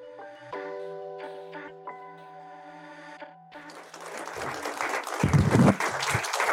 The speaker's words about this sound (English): Big round of applause